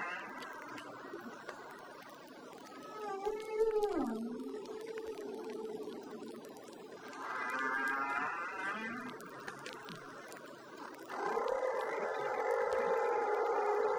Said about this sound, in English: For the next 45 minutes, the two whales sing together. Humpback whale songs are among the most complex and least understood acoustic displays in the animal kingdom.